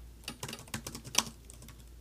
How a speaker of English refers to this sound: Can y'all hear me typing? I hear how hard my fingers are hitting the keyboard.